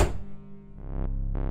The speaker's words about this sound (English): Finally, after what feels like a donkey's year, I reach the door marked third floor. At this point, I don't care anymore. I rush through and let it slam behind me.